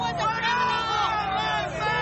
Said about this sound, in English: They booing him.